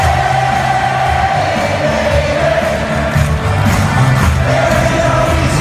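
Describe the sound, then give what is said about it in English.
A whole football stadium crowd at an LSU game, between the third and fourth quarter, sings together in a dense, roaring mass of voices, with a steady pitched melody line running through the sustained wash of noise at constant loudness. “Whole football stadium.”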